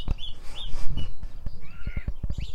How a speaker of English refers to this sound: Mistle Thrush alarm.